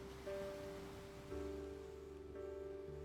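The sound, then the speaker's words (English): A steady, hushed wash of sea surf rolls continuously at the seaside in England on a crisp, cool day outside the summer season. It is quiet and unbroken, with a faint droning hum running underneath and no voices. “So here we are at the seaside in England.”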